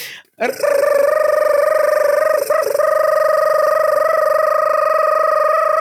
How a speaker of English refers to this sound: That sounds like some strange bird. Is the gibberish siren running out of battery or something? Do we need to recharge those double A's? Siren needs to be recharged.